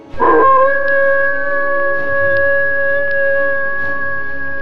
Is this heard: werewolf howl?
yes